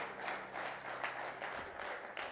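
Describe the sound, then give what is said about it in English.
A church audience claps hands together before being seated, a dense, continuous burst of applause with sharp overlapping claps filling the whole stretch at a steady, fairly loud level and no voices standing out. “Would you clap your hands one more time before you're seated?”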